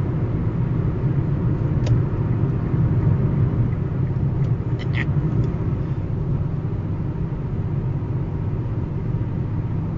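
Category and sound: vehicle, car interior road noise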